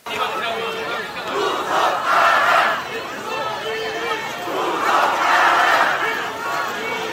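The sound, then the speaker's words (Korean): A large crowd of over 2,000 people at a Democratic Party event at the National Assembly roars and cheers in two big swelling waves, dense and sustained, with overlapping voices shouting together throughout. “자, 함성 한번 볼까요? 함성.”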